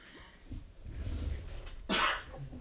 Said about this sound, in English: We both have a cough, so we're definitely going to be turning away from the mics and coughing. If we have to do really loud, we can hit these little buttons and it goes silent.